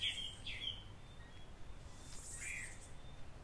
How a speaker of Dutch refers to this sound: Ik hoor dat de vogels volgens mij steeds meer aan het wakker worden zijn. Dus je hoort heel veel achtergrondgeluiden.